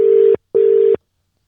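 A phone line ringing: two short, steady electronic ring tones in quick succession, a double-ring pattern, clear and fairly loud, then silence. No one speaks.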